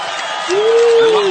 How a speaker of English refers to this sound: I love that applause. I expect that from my three children every time I come home.